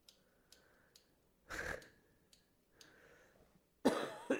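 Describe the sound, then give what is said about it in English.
Two sharp coughs into a microphone, the second louder and harsher, separated by a few seconds of soft breathing and small throat noises. No talking. “Trying not to cough into the mic, fellas.”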